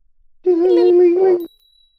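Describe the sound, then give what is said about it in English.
A voice imitates a small bell with a single sustained, slightly wavering "ding" tone lasting about a second, loud, then cuts off abruptly into quiet. “You ring this teeny tiny little bell, and in a poof of smoke.”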